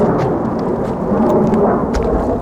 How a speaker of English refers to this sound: This is it's the chopper shooting. You hear the exit. Just fired a rocket or something.